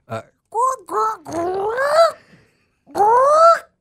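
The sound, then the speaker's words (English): A person's voice imitates bird calls: a quick squeak, two swooping hoots, a longer rising warble, then after a short pause one more rising cry. The calls are clear, tonal and fairly loud, with no words. “you're going to be doing birds. But different birds, okay? Different types of birds all over the place.”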